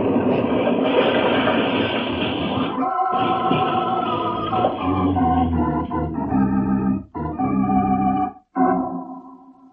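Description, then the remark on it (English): A train rumbles loudly and steadily across a trestle with a harsh metallic drone, then, after a detonator is closed, breaks into a chaotic train wreck of screeching, grinding clatter punctuated by sudden crashing drop-outs. “Hours later, the two men, Joe Malone and Tom Henderson, were driving eastward through the night, far from the scene of the train wreck.”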